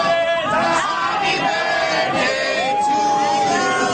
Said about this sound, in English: And, you know, today the former president turned 77. It's his birthday. Yesterday, this crowd at this cafe sang him happy birthday.